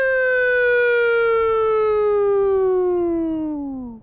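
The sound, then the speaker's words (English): A loud police siren wail, one long steady tone slowly sliding downward in pitch over a few seconds before fading out at the end, heard alone with no voices. “They had that nice, soothing, relaxing siren.”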